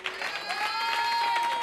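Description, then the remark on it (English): A church audience claps and applauds steadily in praise to God during a service, a dense, continuous wash of hand claps, with sustained organ-like tones holding underneath throughout. “Can we give God a hand clap of praise?”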